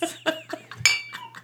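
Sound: glasses clinking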